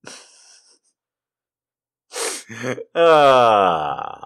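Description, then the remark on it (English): A person draws a few sharp, strained breaths, a hissing inhale followed by wheezy, labored gasps that rise and fade, with a short faint breath at the start. “See, on mic, that's fine, because you don't see me gasping for air. You can hear it a little bit, but like, on stage, it's going to take a little bit more effort.”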